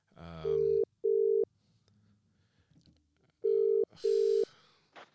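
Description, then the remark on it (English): A phone ringback tone, heard while calling someone back, repeats its double-burst pattern twice, two short steady beeps, a pause of about two seconds, then two more, clear and fairly loud with faint background noise between. “Yeah, it says ringing on my end. Or connecting.”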